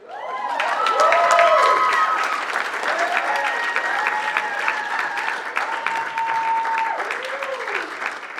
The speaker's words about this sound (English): So let's give her a big round of applause.